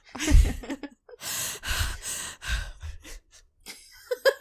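Heavy breathing through the mouth by someone who cannot breathe through a blocked nose: several loud, airy inhales and exhales with short sniffly bursts, sounding congested and uneven, with no talking.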